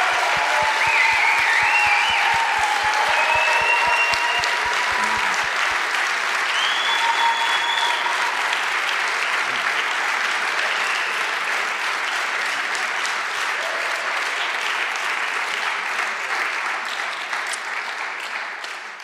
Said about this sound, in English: I wonder if we could just show our appreciation. A round of applause. Yeah.